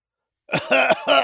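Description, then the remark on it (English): A person coughs three times in quick succession, fairly loud, with harsh, raspy bursts and no one talking. “And then someone coughing right over your shoulder into your popcorn bucket.”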